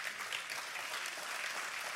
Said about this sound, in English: I thought I'd get a little bit more claps than that, but that's okay. That's all right. I'll amen myself.